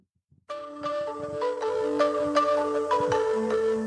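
After a brief silence, a new wave pop song bursts in with bright, layered synth tones and punchy drum hits, playing loud and steady for a few seconds with no voices.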